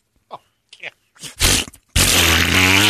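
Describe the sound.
A voice blows a series of fart-like raspberries: a few short, sputtering bursts, then a long, loud, buzzing blast that runs to the end.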